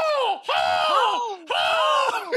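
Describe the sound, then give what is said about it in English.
A voice bellows three drawn-out battle cries of "ho!" in quick succession, each loud and sustained, with pitch sliding downward at the end of every shout. “We've established the battle cry is ho!”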